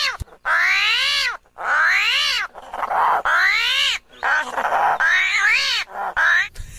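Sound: armadillo vocalization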